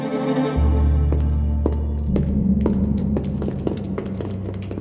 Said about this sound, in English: As soon as he'd heard the sound of footsteps approaching his quarters, a familiar, dull ache throbbed in his belly.